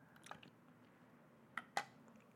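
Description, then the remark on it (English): Quiet wet mouth sounds of someone sipping water: a soft slurp early on and then two short squishy sips near the end, with no one talking. “I had a suckle on my water.”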